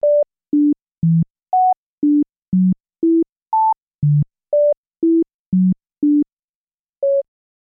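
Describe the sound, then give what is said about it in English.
A steady run of about fourteen short, pure electronic beeps, the notes of a melody played an octave apart, Diana Deutsch's mysterious melody, each jumping unpredictably between low and high pitches so no tune emerges, with a brief pause before the final beep. No one speaks. “A series of notes played an octave apart come across as just beeps, completely indiscernible as a melody.”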